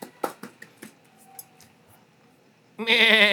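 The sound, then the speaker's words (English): A goat lets out a loud, quavering bleat near the end, following a few scattered sharp taps and a stretch of quiet. “Give yourself a round of applause or a goat noise, I mate.”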